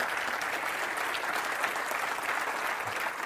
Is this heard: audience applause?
yes